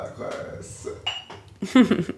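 Rosé wine is poured into glasses: glassware clinks and knocks against a table, with a brief pouring trickle and a few sharp rattling chinks mixed in, while people murmur in the background.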